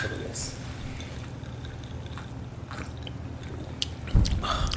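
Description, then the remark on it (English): Someone takes a sip of a drink mixed with Coca-Cola, with soft wet mouth and swallowing sounds over a steady low hum, ending in a louder gulp. “It gets a second sip.”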